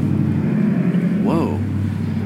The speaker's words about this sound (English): Whoa. We got a lot of background traffic